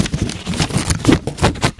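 Papers rustle and crinkle in a quick, irregular series of crisp bursts that continue for about two seconds, fairly loud, with no one speaking.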